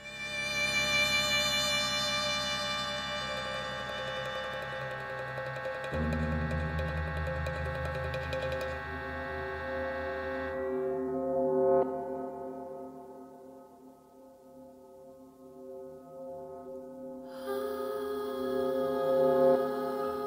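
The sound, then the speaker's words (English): Deep, sustained woodwind-like tones hold steady harmonic notes while low electronic rumbles swell underneath, thinning out midway before a brighter layered passage returns near the end. No one speaks. “Anyway, the whistling in this, if that doesn't get you, then these deep woodwind sounds and those electronic rumbles, they will.”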